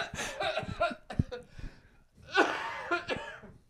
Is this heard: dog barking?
no